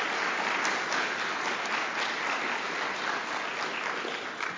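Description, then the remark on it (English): An audience claps steadily to celebrate that Joel will be ordained as the Reverend Joel Abraham in October. It is a dense, even wash of many hands with no voices over it, holding at a fairly loud level and easing slightly at the very end. “No one's more surprised than I am that that's happened, but that means that in October Joel will be ordained and be the Reverend Joel Abraham, so I think that probably deserves a round of applause.”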